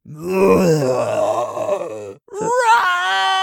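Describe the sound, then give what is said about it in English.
A voice imitates the growl of a big, fish-like monster: a long, low, rough groan lasting about two seconds, then a brief pause and a rising, strained wail that climbs in pitch. Loud throughout, with no speech. “And then we get this big growling. And this big, like, fish kind of monster comes out.”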